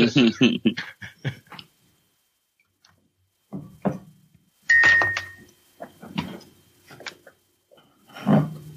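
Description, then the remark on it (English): A Ring doorbell chime sounds as a FedEx delivery driver waits at the door, amid bursts of muffled clattering and rustling noise, with a brief bright tone ringing out midway; the sounds come in uneven clusters separated by short quiet gaps. “He connected it to his Ring doorbell, apparently.”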